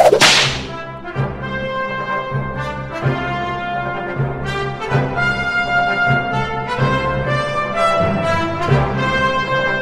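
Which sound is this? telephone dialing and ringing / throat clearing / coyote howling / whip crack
whip crack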